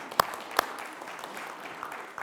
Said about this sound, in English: But I just want to say, mothers, we're so thankful for you this morning. And I know that, yes, you can clap for that.